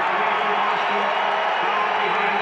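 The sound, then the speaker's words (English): A steady, dense roar of an arena crowd at a basketball game cheering a foul called on Gordon Hayward as the 30-second shot clock bell rings, with whoops blending into a continuous wash of noise that holds at a constant loud level throughout. “Crowd loving the foul on Hayward as the 30-point bell rings.”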